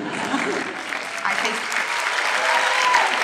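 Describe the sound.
Steady audience applause during a speech after the election is mentioned fills the whole stretch: a dense patter of many hands clapping at a fairly loud, even level with faint voices mixed in beneath it.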